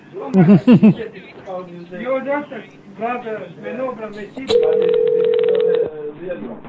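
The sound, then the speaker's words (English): A loud, steady telephone off-hook tone drones for about a second and a half, following stretches of people talking, with a clicking burst at its start. “They will not call us anymore if we just leave the phone off the hook.”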